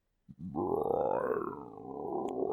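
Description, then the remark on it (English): A loud stomach growl, likely a voice imitating it: one sustained, wavering low rumbling groan lasting about two seconds after a brief click, with no talking. “It's my stomach growling.”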